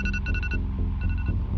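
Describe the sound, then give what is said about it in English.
An alarm clock goes off at 5 a.m., ringing with a loud, steady run of electronic beeps repeating in quick pulses over a low hum, filling the whole short moment with no one speaking. “My alarm goes off at 5.”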